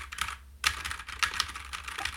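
Rapid typing on a mechanical keyboard, fairly loud, with a brisk, uneven run of sharp clacking keystrokes and a brief pause near the start. No one speaks.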